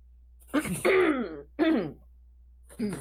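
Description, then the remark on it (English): A man clears his throat in three short, raspy bursts: two quick ones back to back, then another after a brief pause, with a fourth starting at the end. “Let me clear my throat for this.”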